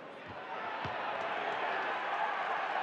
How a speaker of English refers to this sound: Nice round of applause coming for Dante, hopefully. Big round of applause for Dante.